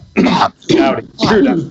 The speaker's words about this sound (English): Oh, yeah. See, you and I got the same cough.